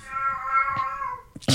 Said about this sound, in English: Oh my God, the cat is losing her mind playing soccer.